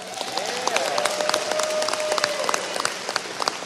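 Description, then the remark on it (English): An audience claps steadily for a few seconds to show how many know about Script Talk, a dense, irregular patter of many hands at a moderate level, with a thin whistle-like tone drifting through the middle and faint voices underneath. “So I'd like to hear, by the sound of your claps, how many of you know about Script Talk?”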